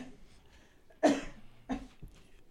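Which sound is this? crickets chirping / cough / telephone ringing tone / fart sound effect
cough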